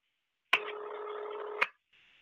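A telephone line rings once through the earpiece, a steady electronic burst about a second long framed by sharp clicks, followed by a fainter tone starting up. No one speaks.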